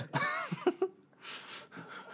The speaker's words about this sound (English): when you take away the microphone, we can still hear you cough. Just letting you know. Yeah, but it's not like right next to my mouth.